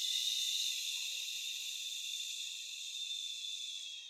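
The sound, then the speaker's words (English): A long, steady shushing exhale made after a deep inhale to soothe a baby, a breathy hiss that holds for about four seconds and slowly fades a little toward the end, with no talking. “But if I take a deep inhale, and then on the exhale, I do the shushing sound.”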